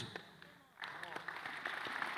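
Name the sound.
audience clapping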